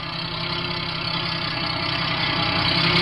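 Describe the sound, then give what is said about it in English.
A truck engine rumbles steadily with a deep, throbbing drone, growing slightly louder as it draws nearer. No voices, just the continuous motor noise filling the scene. “When the truck gets close enough, I'll put the searchlight in the driver's face like before.”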